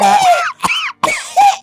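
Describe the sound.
A person performs an exaggerated, hacking imitation of a "poor person's cough", a quick run of about four loud, strained, voiced bursts, theatrical rather than natural.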